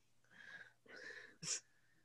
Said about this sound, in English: Sorry. I'm going to sneeze right there.